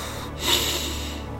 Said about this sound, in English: And take a breath in whilst tightening every muscle in your face. Scrunch your face up, make the funniest face you've ever made. Scrunch it up, your eyes, your nose, clench your jaw, just tighten your face up as much as you can. Breathing in.